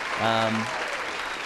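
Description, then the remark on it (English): A steady wash of applause, dense and continuous, with a brief tonal burst like a short cheer or horn rising over it near the start, given as a second round of applause for someone who got an answer from a clue. “I'm going to give you a second round of applause for that.”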